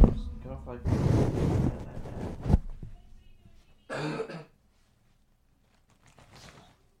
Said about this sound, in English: One second, I gotta. I have a big cough, and it's like a strep cough, and it hurts.